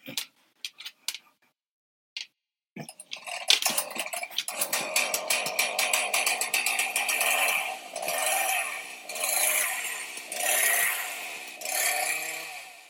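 A few sharp clicks, then a chainsaw roars to life and revs up and down repeatedly, loud and close, its buzzing engine pitch rising and falling for about ten seconds.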